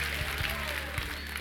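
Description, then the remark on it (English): An audience claps steadily and loudly for the Lord, a dense wash of applause mixed with scattered voices shouting out, without pause. “If you believe that, give the Lord a clap and a shout.”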